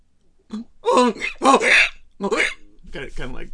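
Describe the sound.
A person imitates a donkey's bray, with a series of strained, wavering vocal bursts rising and falling in pitch, loud and rough, with short pauses between them.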